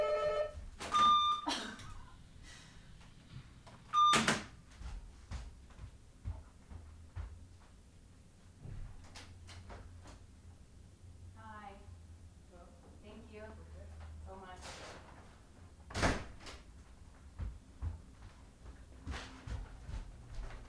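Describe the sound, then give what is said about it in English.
A front door clunks open to receive a food delivery and later thuds shut, with a couple of short electronic beeps early on and faint voices murmuring in between. “I answer the door half naked”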